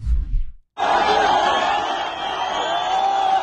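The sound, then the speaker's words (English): A large crowd of Gazans roars and shouts at the release of Israeli hostages by Hamas, many voices cheering and jeering together in a loud, sustained wall of noise that starts abruptly after a brief low rumble and a moment of silence. “Instead, the ICRC, the wonderful humanitarian organization, has become a shuttle service for Israeli hostages, helping Hamas release the hostages as Gazan crowds cheer in bloodthirsty fashion.”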